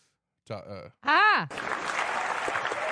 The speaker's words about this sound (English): Applause button. Applause button.